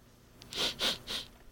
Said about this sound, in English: He's kind of sniffling and thinking about it.